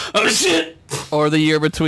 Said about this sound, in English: Bless you! I literally sneezed out the word shit.